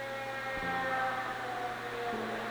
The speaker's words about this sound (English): Oh, another ambulance.